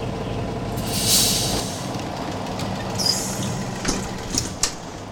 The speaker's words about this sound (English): Look, a bus is coming this way. Maybe we can take it there.